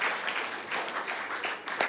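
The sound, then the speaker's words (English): Audience applause after a startup pitch for YFlix: a dense, steady patter of many hands clapping at once, holding a fairly even moderate level for a couple of seconds with no voices over it. “I think he deserves a bigger round of applause than that.”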